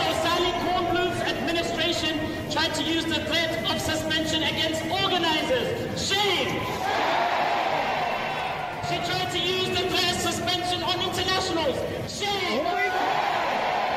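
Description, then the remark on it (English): A large crowd of over 500 protesting students chants "Shame!" in unison outside, many voices shouting together in a loud, steady rhythm that keeps going for the whole stretch with only brief dips between phrases. “over 500 pro-terrorist students went outside and said,”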